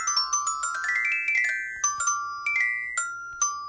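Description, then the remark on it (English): A short, bright theme jingle for an improv games segment, of quick plucked, bell-like notes that climb and then settle into a bouncy phrase, lasting a few seconds and playing clearly on its own with no voices. “That was, of course, the improv theme for games, and I have a game for you guys this week.”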